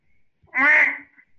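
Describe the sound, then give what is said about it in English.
A person imitates an angry duck with one loud, harsh, nasal quack lasting about half a second, with near silence before and after. “How about an angry duck?”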